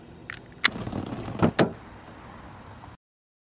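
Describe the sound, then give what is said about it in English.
A car door shuts with a sharp thud, followed by two quick heavier clunks and a low mechanical rumble as the car starts, then everything cuts off abruptly. “And I'm gonna have to drive. Fine, just don't crash my car.”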